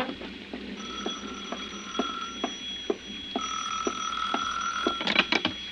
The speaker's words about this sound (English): It was 5 minutes to 6 when the phone rang again.